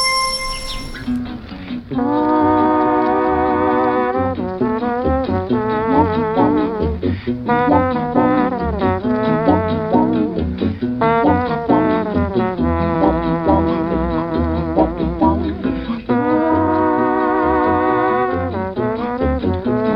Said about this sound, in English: It has nothing to do with plants, but it is really cool because it's an instrumental track, but it's only using guitar and voices.